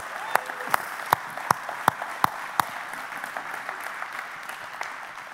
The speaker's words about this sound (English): Come on, you ought to clap a little more than that.